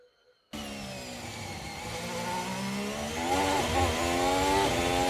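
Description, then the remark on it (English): A high-pitched Formula 1 engine screams suddenly, its harmonic whine holding steady, then rising and dipping through quick gear changes as the car powers along at speed coming out of turn three, heard from onboard. “Leclerc has got quite a well-balanced car going through here”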